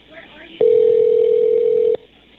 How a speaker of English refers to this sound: Okay, there's going to be a lot of ringing here. I'm going to jump this forward.